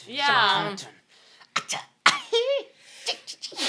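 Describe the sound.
A woman gives a sharp, forceful sneeze that bursts out with a breathy hiss and a voiced tail, following a long sustained sung note and some short sharp breaths; another quick burst comes near the end.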